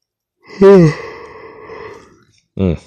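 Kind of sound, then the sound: human body sound, a yawn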